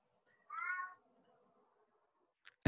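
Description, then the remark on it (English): A single cat meow, clear, rising and falling over about half a second, followed by quiet and a brief thump or click at the end. “Can you hear him? Is that a cat?”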